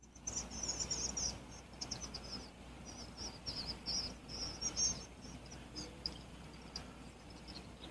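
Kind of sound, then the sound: bird, swallows chirping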